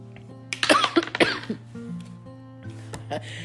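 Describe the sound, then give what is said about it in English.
A short burst of two or three harsh coughs in quick succession from a person coughing at night, followed by a quieter throat-clearing rasp, with a steady low hum in the background. “I don't know why I'm coughing so much tonight, and I apologize.”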